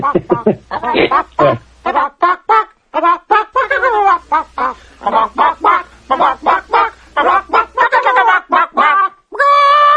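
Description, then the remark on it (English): A chicken clucks in a rapid, uneven string of loud clucks that carry on for several seconds and end in a higher, drawn-out squawk. “I think you're just being chicken at this point.”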